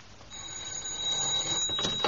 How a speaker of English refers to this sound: Now, what can that be? Well, obviously it's somebody ringing up, sir.